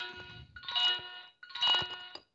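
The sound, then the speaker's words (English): A talking microwave's finished signal after heating water for 15 seconds on high power: bright, buzzy electronic tones in a short lead-in, then two longer, louder bursts, ringing like a doorbell chime, with no one talking over them. “there it is done. What I did was just heated up some water for 15 seconds.”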